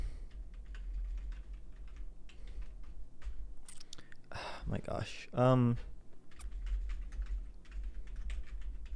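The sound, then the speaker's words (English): Steady clicking of computer keyboard keys as someone searches for a site on Podbean runs through the whole clip over a low hum, pausing briefly while someone exclaims in the middle before the rapid typing resumes. “I can't see where I'm typing.”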